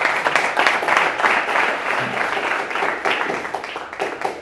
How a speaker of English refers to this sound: I'll take a round of applause for that one, guys.